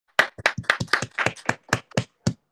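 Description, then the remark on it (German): A quick burst of about fifteen sharp hand claps in an uneven, rhythmic pattern, like a clapped-out beat, fairly loud and crisp with no talking over it. “Ich hab es geklatscht und du nicht!”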